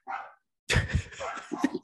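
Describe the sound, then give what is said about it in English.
A dog, one of several going down a hall, gives a short bark, falls silent for a moment, then lets out a fairly loud flurry of quick, overlapping barks and yips. “Dog barks be damned.”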